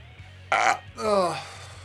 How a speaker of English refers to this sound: I just had barbecue chicken, so I'm burping.